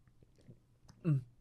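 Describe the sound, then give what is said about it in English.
Someone takes a sip of water: soft wet mouth sounds, then one short, louder gulp near the end. “Sip of water.”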